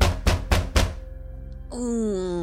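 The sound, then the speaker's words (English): Four heavy, booming knocks on a door in a tower in quick, even succession, loud, followed after a short pause by a sustained voice-like tone. “As you're getting ready to leave to Icewind Dale, where you have been directed, this heavy knock comes at the door.”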